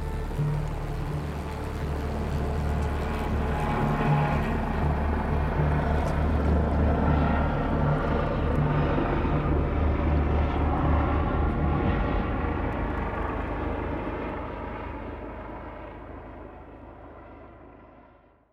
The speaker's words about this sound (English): Shh! Do you hear that? Is that... Helicopter! It's Whittier Corp!